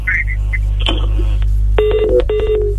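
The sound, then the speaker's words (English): A telephone rings electronically in two short, bright bursts near the end, following a murky stretch of faint background sounds over a steady low hum. “I'm calling you. Phone”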